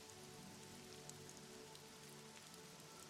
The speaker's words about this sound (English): And he walks out into the rain.